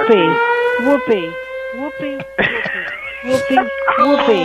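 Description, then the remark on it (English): A steady, droning siren alarm holds a constant pitch through the whole stretch, loud, while voices talk and laugh in short bursts over it. “It's the sexual abuse alarm.”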